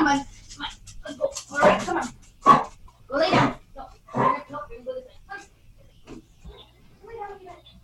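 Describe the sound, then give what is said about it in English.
A dog with congestive heart failure coughs loudly in a series of harsh, raspy bursts, roughly four strong hacks in an uneven rhythm followed by quieter wheezy sounds. “He's got congestive heart failure, so he coughs.”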